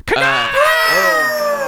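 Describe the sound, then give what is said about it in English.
A person lets out a loud, sustained screech imitating an eagle's cry, a single shrill, wavering call lasting under two seconds, harsh with no talking. “I'm not going to allow that to be the last sound our lovely listeners hear, is a terrible screeching, probably peaked in the file.”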